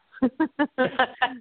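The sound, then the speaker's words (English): A quick run of six sharp, tonal barks from dogs, the first three evenly spaced and the last three packed closer together, loud with no talking over them. “My dogs are about to go off.”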